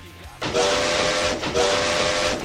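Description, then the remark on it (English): A steam train whistle sounds in two long, loud blasts, its shrill tone wrapped in a rush of hissing steam, with a short gap between them. “Yeah, there's the train for you.”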